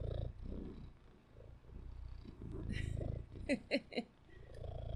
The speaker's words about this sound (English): Listen to him purring. Listen. Take it away, Junior. Into the mic, please.